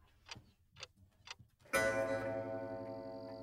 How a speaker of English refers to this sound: That's the lab's grandfather clock chiming midnight. But at Menlo Park, that doesn't mean the day is wrapping up.